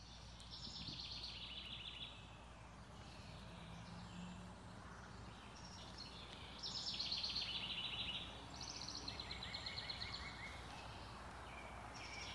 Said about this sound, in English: There's so much peace in the woods. Just to sit and be refreshed and renewed by the sound of those birds just singing joyfully.